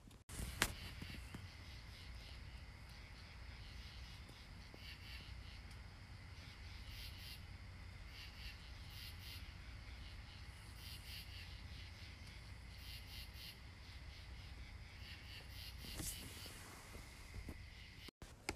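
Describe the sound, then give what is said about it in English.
A steady chorus of katydids or cicadas rubbing their back legs together rasps and pulses continuously in woods in Madison, Connecticut, United States, at 5 p.m. on July 2, 2019, layered over a soft low rush of wind through trees, with no voices. “The woods are filled with the soft whisper of the wind through the trees and the rasp of the katydids or cicadas as they rub their back legs together in harmony.”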